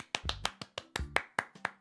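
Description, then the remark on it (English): A single person claps alone, about eight quick, sharp claps in a steady rhythm, fairly loud, with no talking. “What if somebody did clap?”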